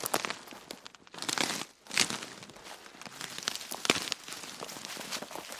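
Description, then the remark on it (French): Dry leaves crackle and crunch steadily underfoot in a forest, a continuous rustling of uneven steps through brittle litter with no voices. “Les feuilles craquaient sous le pied.”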